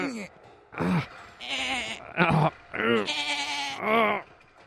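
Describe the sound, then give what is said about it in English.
A person imitates sheep with a run of loud, wavering bleats, about six in quick succession, each a quavering, nasal baa. “Aren't you supposed to be making sheep noises?”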